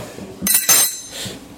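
Two bright metallic clinks close together, like spoons being dropped onto a table, followed by a softer rattle of cutlery settling, as spoons are brought to a tea party table.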